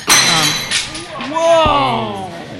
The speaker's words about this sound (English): And it's raining glass now. Yeah. Look at that. Dramatic reenactment.